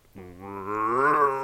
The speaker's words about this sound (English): just a roar. I mean, the loudest roar, you know, like a rut roar out in the thicket. And I knew it was him because that, you know, that's the direction he was headed. And obviously he's the only mature deer in there.